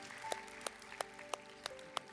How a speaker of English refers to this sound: All over this house, can we clap our hands to the Lord? Let's stand together.